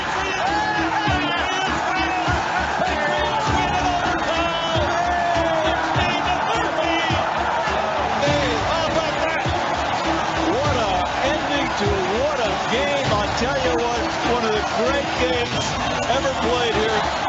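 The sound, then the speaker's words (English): A football crowd cheers loudly and steadily as the ball is snapped and kicked, a dense roar of many voices with scattered whoops and shouts rising above it, never dropping off across the whole stretch. “The crowd will tell you whether he makes it or not.”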